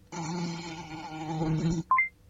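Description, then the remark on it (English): A fly buzzes steadily for nearly two seconds, a droning hum with slight wavering, then stops and a short electronic beep follows. “Fly would have been the correct answer.”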